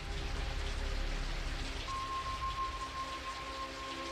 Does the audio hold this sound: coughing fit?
no